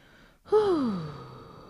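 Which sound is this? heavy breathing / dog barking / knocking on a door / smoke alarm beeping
heavy breathing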